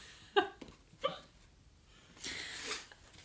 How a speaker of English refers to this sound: I have the hiccups.